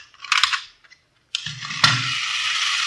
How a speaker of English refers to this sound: See this gadget here? Pretty clever, huh? Yeah. Miniature Sherman tank. What's it do? Watch.